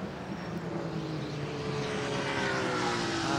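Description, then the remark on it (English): The engine of the Hyundai number 1 race car burbles steadily at low revs as it goes back behind the pit wall, a loud, continuous rumble with a faint rising whine, heard alone without any talking. “And Hyundai number 1 burbling back behind the wall.”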